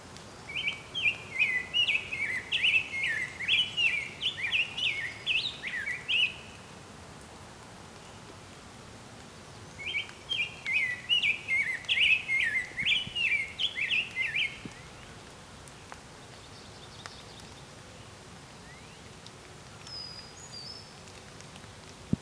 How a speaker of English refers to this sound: Oven bird in the distance on the right there.